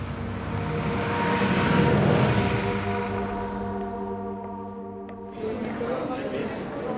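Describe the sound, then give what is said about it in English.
A city bus in Bern, Switzerland, boarded outside an antique shop, drones steadily amid road traffic noise, swelling slightly early on, then the rumble shifts and roughens near the end as the bus changes speed. “The museum closes at 5, but I get on a bus outside the antique shop and make it here on time.”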